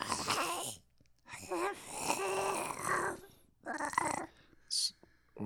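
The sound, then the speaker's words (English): A person imitates the hoarse meowing of a little cat with laryngitis: a few raspy, strained, drawn-out cries with breathy scratchiness, separated by short pauses, ending in a brief hissy puff. “Oh boy, this poor little cat. He's got laryngitis. That's sad. I know. His meows are like, it's like.”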